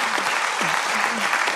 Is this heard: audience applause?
yes